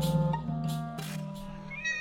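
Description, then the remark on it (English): A cat meows in drawn-out, wavering cries that run together, ending on a rising note, at the pet-friendly section of the Starry Sky Ball. The calls are clear, with no talking. “Meanwhile, at the pet-friendly section of the Starry Sky Ball, Lord Billowstick and Lord Terrywatt engage in a lively discussion concerning the finer points of lens grinding for cat monocles.”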